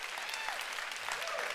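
An audience claps steadily, a dense wash of many hands applauding at even loudness throughout, with a few faint voices mixed in.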